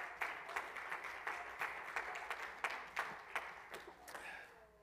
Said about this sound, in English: Oh, let's clap our hands and praise him again this morning.